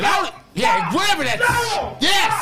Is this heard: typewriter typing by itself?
no